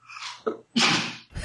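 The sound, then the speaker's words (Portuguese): A loud sneeze: a breathy wind-up intake, a short catch, then a forceful explosive burst, followed by a brief sniff at the end. No talking. “Deixa eu só espirrar”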